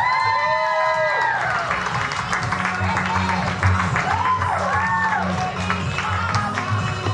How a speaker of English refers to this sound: Oh my God, keep clapping, I need it. No, keep clapping. No, come on, you're not clapping. I need this.